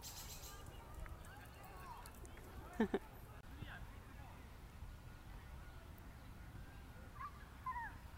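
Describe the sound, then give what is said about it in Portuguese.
A small dog, Wilson, lets out a couple of short, high whimpers a few seconds apart over a steady outdoor background hum while being walked in Prospect Park, Brooklyn. “Eu venho caminhar aqui quase todos os dias com o meu cachorrinho Wilson.”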